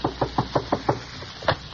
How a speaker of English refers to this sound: when he knocked on Tony's door with a sliding peephole in the panel.